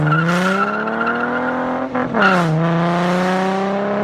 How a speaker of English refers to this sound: I think that's what my car sounds like.